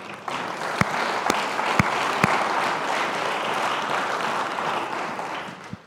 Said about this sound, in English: We have families coming here whose names are on that cross. Absolutely. And you better give me a bigger cheer.